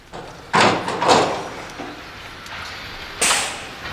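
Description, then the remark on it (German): A door is opened, producing a couple of sharp, rushing bursts followed by a softer rattle, then another abrupt burst a few seconds later, with no voices. “Wenn wir die Tür öffnen, sehen sie uns und dann geht's rund.”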